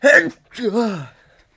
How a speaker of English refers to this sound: I'm going to sneeze. Oh, Jesus.